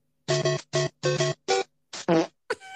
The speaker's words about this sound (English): Mario fart.